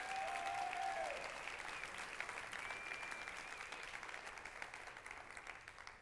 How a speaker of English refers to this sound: If you're a staff member here at Heart of the Father, would you stand and we give these guys a round of applause just for their help on the Sundays?